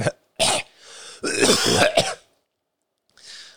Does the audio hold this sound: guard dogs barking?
no